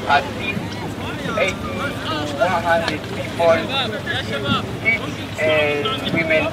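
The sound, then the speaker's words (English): A rescue boat on the Mediterranean Sea at about 2 a.m. in pitch darkness, about 50 miles off the coast of Libya, its engine and rushing wind forming a steady roar, while several voices call and shout over the noise as rescuers move in on a small fishing boat packed with migrants. “It's pitch dark. We're in the Mediterranean Sea, about 50 miles off the coast of Libya, and the small fishing boat is so packed with people that if anyone panics or moves too quickly, it could capsize.”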